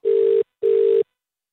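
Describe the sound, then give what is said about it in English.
An outgoing call's ringback tone while phoning a pizza restaurant: a double ring of two short, steady, mid-pitched electronic tone bursts with a brief pause between them, fairly loud and without any talk. “Okay, let's give Pino a buzz.”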